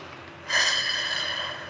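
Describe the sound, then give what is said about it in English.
A single deep, airy breath taken during a guided breathing exercise, starting suddenly and streaming steadily for over a second with no talking. “Let's do that again. Breath is so beautiful.”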